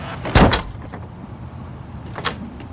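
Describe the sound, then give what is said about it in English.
A door slams shut with a loud, sharp thud near the start, followed by a quieter secondary clunk a couple of seconds later against a low rumbling background. “After Bart slams the door, I leave my business card on the mailbox and then return to the car to update Todd on the encounter.”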